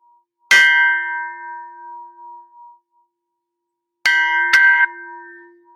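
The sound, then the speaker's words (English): A large bell, bigger than the other bells used, is struck three times: one strike near the start rings out and decays over a couple of seconds, then two quick strikes follow later, loud with long resonant tones. “This is a big bell.”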